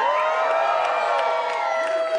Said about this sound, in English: You're cheering for just random things. Don't. Okay. That's, yes, you're cheering random things.